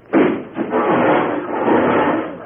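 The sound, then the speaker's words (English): A sudden loud crash of splintering wood as a person crashes through a wooden wall, followed by a couple of seconds of clattering, rumbling debris as boards break apart and fall. “Doggone it, I thought there was a door there.”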